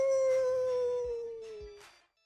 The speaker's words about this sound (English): Oh, that was I didn't know what the hell that was. Wolf. That was his Wolfie. That sounds like a dog.